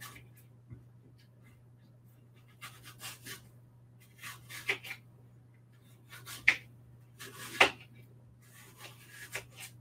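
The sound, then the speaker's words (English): Soft scraping strokes of a knife peeling a second apple, coming in short irregular bursts with a few sharper scrapes, over a steady low electrical hum and no talking. “All right, now onto my second apple. I'm just gonna peel this one too.”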